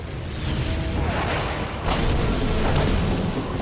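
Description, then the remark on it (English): Loud, continuous booming special-effects explosions set off by Ray Douglas and his special effects team for filming, with a deep rumbling roar, a fresh blast bursting in about halfway through, with no voices. “Surely the explosions can't really harm you.”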